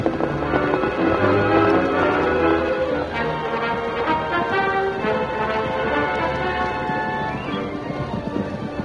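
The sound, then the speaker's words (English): A pack of horses gallops hard in a race after a starting gun, their hooves drumming in a fast, dense, continuous patter that stays loud throughout, with music swelling underneath. “When Silver reached the starting line, the other horses were already well ahead.”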